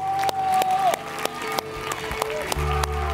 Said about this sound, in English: Give God a hand clap for those people, please.